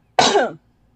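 A single loud cough with a raspy, throaty edge, lasting under half a second and followed by quiet.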